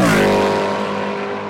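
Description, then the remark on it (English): A loud S5000 open-wheel race car engine roars, its harmonic whine sliding downward as it revs and fades slightly over a second and a half, with no voices. “Unreal cars to drive the S5000. So much power.”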